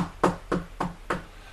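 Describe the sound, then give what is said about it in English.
Four firm knocks on a neighbouring motel room door in a steady, evenly spaced rhythm, fairly loud, each a dull thud with no voices around them. “I'm going to knock on the neighbor's door and see if I can get their TV.”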